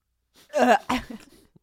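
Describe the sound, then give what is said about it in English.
A short, throaty burp with a rough voiced tone, quickly followed by a second softer burst and a bit of breathy trailing noise. No talking. “I just burped.”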